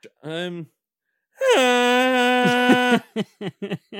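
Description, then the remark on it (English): A voice imitates a vuvuzela: a brief vocal sound, then one long, steady, buzzing drone held at a flat pitch for about a second and a half, followed by a few short choppy vocal bursts. “the vuvuzela, lads, let's just remember the noise it makes. Can you do an impression?”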